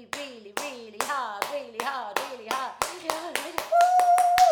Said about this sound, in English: There is actually a way to clap that will increase energy in your lower torso. It's a bit of an acupuncture clap, and you have to press both your palms together.